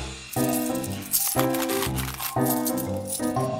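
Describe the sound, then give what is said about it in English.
Coins from opened piggy banks rattle and jingle in bright, scattered bursts over steady background music with held tonal notes. No one speaks. “I have all these coins.”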